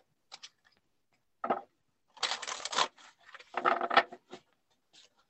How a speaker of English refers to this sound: Let me get a good shuffle, ladies. Mm-hmm. It's the witchy ASMR. We love it. Truly. So I do not pick the cards. I don't cut and pick. I just hand over hand and just let whatever pop out.